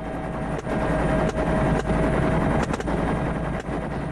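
A helicopter's loud, steady roar fills the air while automatic gunfire cracks out in several sharp, irregular bursts as hogs are shot at from the helicopter; no one speaks.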